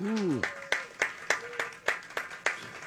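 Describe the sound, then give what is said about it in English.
A brief voice sound at the start, then steady, evenly spaced sharp claps, about nine in quick succession, crisp and moderately loud rather than a dense wash of crowd applause, given as a round of applause for a former Major League Baseball umpire. “How about a round of applause for former Major League Baseball umpire”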